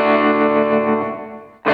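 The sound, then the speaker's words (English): A sustained, distorted electric guitar chord played through a reverb pedal rings out with a washy reverb tail that slowly fades, then a new strummed chord cuts in abruptly at the end. No voices. “I've got a nice reverb pedal, which is you can't really.”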